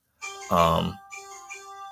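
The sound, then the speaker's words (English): A phone notification alert sounds once from a phone whose notifications were left on, a bright tonal chime with ringing overtones that lingers and fades, partly overlapped by a brief voice near the start. “I forgot to turn my notifications off on my phone.”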